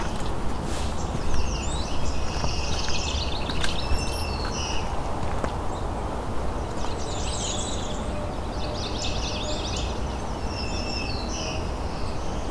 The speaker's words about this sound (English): Northern cardinal. A couple males arguing.